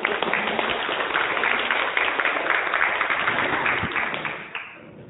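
A crowd applauds with dense, steady clapping for about four and a half seconds, then the sound thins and fades out toward the end.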